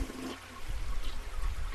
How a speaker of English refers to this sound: If you flush that toilet one more goddamn time. What? I swear to everything holy and unholy. I said if you flush that toilet one last time, I swear to everything holy and unholy.